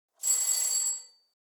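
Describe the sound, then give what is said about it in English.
The doorbell of apartment 14B, a small mother-of-pearl button beside the door, rings once in a single bright, buzzing burst lasting under a second, high-pitched and fairly loud, then trails off quickly into silence. No voices are heard. “Lightly and maliciously, Tony pressed the bell again.”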